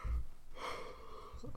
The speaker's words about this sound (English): I'm sorry with the fucking yawning.